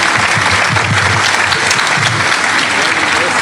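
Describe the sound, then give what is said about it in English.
Loud, steady audience applause for the panelists at the end of the talk show fills the whole stretch, a dense wash of many hands clapping with no pauses, and a few indistinct voices murmur faintly underneath. “Please give our panelists a warm welcome and round of applause.”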